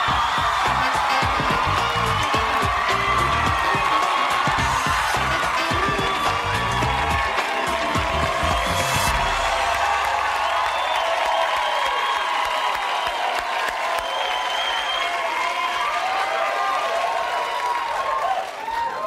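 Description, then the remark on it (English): A loud, sustained roar of applause and cheering from a talk-show studio audience as Jennifer Lopez is welcomed on, with dense clapping, whoops and shouts filling the whole stretch without letting up. “They cheer every time I stand up.”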